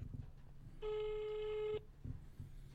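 A single ringback tone of an outgoing phone call to Jonas Jonasson, synth player in a band and maker of the show's jingles, one steady electronic burst lasting about a second, fairly clear over a quiet, faintly rumbling line, with no one talking.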